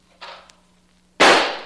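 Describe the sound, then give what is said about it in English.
Gunfire at a clay pigeon: a softer sharp crack, then about a second later a loud, harsh blast that fades quickly. No one speaks. “I'd like a shot at one of those clay pigeons.”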